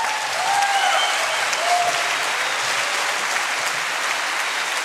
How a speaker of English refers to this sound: bask in it, my friend. No one will ever clap for you again. No one claps for investigative journalists.